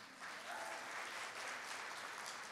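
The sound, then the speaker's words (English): An audience claps steadily, many hands blending into a dense, even patter of applause that holds at a fairly constant level for a couple of seconds with no voices. “You didn't know what else to do, but you had to clap, huh?”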